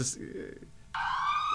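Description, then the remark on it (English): A police siren sound effect kicks in abruptly partway through, a loud, steady, high-pitched wail with a slight upward glide, following a quieter, muffled stretch. “where's my sound effect? I've got to get find my sound effect again”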